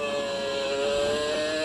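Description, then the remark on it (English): A high-revving V8 racing engine screams at a steady, sustained pitch, loud and recorded onboard, with no voices over it. “So, I'm going to go to the V8 now.”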